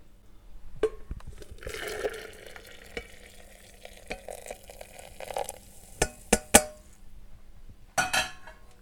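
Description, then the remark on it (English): Just over a pint of water is poured into a jug, a steady splashing rush lasting a few seconds, with a handful of sharp clinks and knocks from the container toward the end. “So we're going to pour the water into the jug.”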